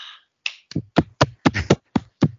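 A series of about eight sharp hand claps in a steady, fairly quick rhythm, each a crisp loud smack, with no voices over them.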